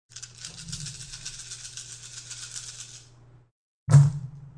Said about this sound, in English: That's a lot of dice.